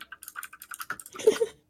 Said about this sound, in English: Listen to all your mechanical keyboards.